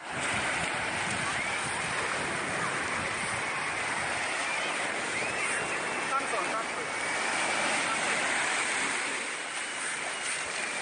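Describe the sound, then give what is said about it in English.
A continuous, rushing roar of ocean surf breaking on the shore as a man tries to push the waves back into the sea, steady and fairly loud throughout with a slight swell near the end, and no clear voices. “So we see him trying to push the waves back into the sea.”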